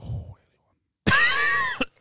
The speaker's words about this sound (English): That is a wheezy cough you've got, man. It is a wheezy cough.